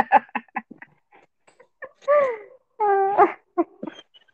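A dog whines insistently to be let out: a series of short, choppy whimpers, then two drawn-out, high, wavering cries, followed by a few more brief whimpers.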